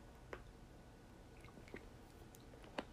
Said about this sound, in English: Let me take another sip because this might get a little lengthy. Hold on.